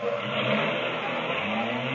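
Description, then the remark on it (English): A car engine runs steadily and fairly loud, with a low throbbing drone and a rushing, slightly rattly hum, as a car drives in. “Hey, Costello, is there another car driving in?”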